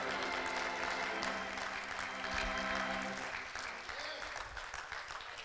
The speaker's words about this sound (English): Come on, clap your hands in God's house.